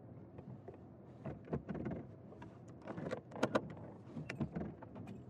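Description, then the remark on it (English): Car sounds as a vehicle is parked behind brush: a few sharp mechanical clunks of a door and the brief whirring of power windows, with soft rustling between them. “I'm gonna park here behind this brush.”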